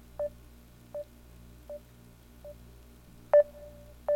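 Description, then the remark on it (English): A Facebook Messenger incoming call ringing tone: a series of short electronic beeps repeating roughly every three-quarters of a second, ending with a longer, louder sustained tone, over a low background hum with no talking. “It's like sonar. It's creepy. It's eerie.”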